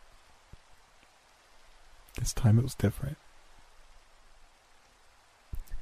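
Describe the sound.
Steady, soft rain hisses throughout in the background, a constant wash of falling drops. A voice briefly speaks over it near the middle.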